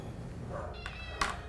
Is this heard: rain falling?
no